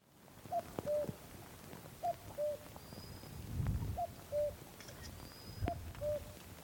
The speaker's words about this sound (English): There's a cuckoo on a little peak on a crag across Loch Coigach.